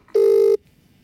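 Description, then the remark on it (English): A single loud, steady electronic tone from an outgoing live phone call to a friend sounds once for under half a second, then cuts off into near silence. No one speaks. “Can I call my friend now live?”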